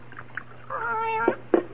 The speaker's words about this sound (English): Oh, hush up, cat.